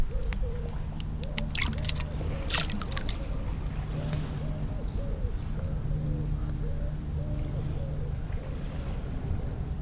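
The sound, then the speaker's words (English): Birds at a duck pond coo over and over in a steady, low-pitched rhythm, with a few sharp chirps and clicks early on and a constant low rumble underneath. “Right, we're now at the duck pond rather than the holy well,”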